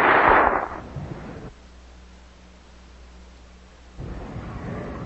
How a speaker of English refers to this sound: I was careful about that. I wanted to make sure that you applauded me somewhat longer than you did my junior colleague.